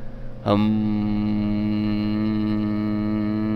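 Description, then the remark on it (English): A loud, steady electrical hum in a quiet donut shop with few people kicks in abruptly about half a second in and drones on unchanged, a buzzy, overtone-rich tone with no voices over it. “But you do hear a hum. You probably do hear a nice loud hum, though, huh?”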